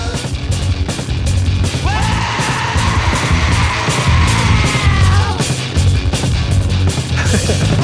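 A singer lets out a long, strained scream over loud, dense rock music with pounding drums, the raw vocal rising and holding for a few seconds before dropping back into the band.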